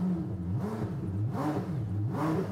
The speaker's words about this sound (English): we've set up a test file which will tell us how fast the engine is revving per second